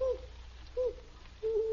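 An owl hoots three times with no one talking: two short, low, steady hoots spaced apart, then a longer drawn-out one, clear against a quiet background.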